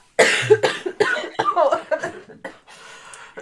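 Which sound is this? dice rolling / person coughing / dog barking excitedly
person coughing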